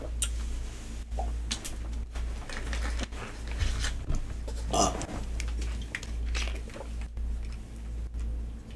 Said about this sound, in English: Please do not make gross mouth noises. Don't spit it on me, please. I don't like how I still know the liquids in your mouth.